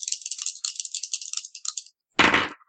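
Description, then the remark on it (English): Dice rattle rapidly in a cupped hand for nearly two seconds, then tumble onto a hard surface with a sharp clatter after a brief pause, a game roll that comes up 2. “Throw those dice away.”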